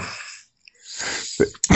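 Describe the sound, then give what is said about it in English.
A loud sneeze: a sharp inhaled build-up followed by a forceful burst of breath and a brief final puff, heard alone with no talking. “Excuse me. I was exploding there.”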